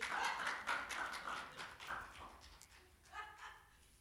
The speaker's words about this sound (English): Why is it so quiet? Y'all, why y'all looking at me like this? Clap your hands somewhere.